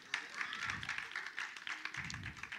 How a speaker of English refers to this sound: The world doesn't know better than God. Y'all can clap. Yeah.